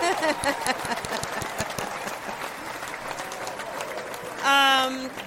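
Steady, crackling applause from a small group claps on for about four seconds, then a short, loud sustained cry rings out over the last of it.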